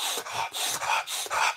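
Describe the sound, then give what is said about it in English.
Harsh, forceful breathing as a strained breathing exercise, about four rapid, strained breaths in quick rhythmic succession, each a loud, rough rush of air, with no talking. “They often teach this very violent, harsh, strained, stressed sort of breathing exercises.”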